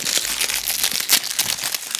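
package being torn open

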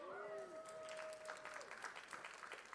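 sparse clapping

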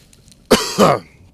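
coughing and throat clearing

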